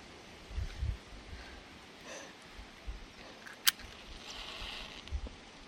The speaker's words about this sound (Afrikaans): En die wind waai.